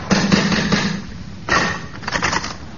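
Knocking on the door of a spooky-looking house: a quick run of raps, a short pause, then a second burst of knocks, fairly loud, with no one speaking.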